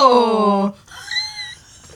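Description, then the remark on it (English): A loud human exclamation, then a brief, thin, high-pitched cry from a startled cat, quieter, fading quickly into silence. “We just freaked your cat out.”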